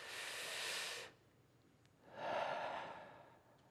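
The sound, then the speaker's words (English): Two slow, deep, soft breaths while holding a child still in the lap to calm them: a long airy inhale, a pause of near silence, then a fuller, lower exhale. No one speaks. “We're just holding them still. Breathing.”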